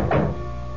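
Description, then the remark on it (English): A single dull knock on a door, a short low thud that fades quickly into quiet with no voices. “Suddenly, I heard this rapping at the door.”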